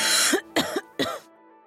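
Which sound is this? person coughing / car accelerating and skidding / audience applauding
person coughing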